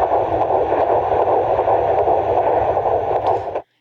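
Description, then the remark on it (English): A fetal heartbeat through a doppler monitor, in the 150s: a rapid, steady whooshing pulse wrapped in loud static hiss. It runs without any talking and cuts off abruptly. “You want to hear the heartbeat again? Okay. Heartbeat is in the 150s, which is normal.”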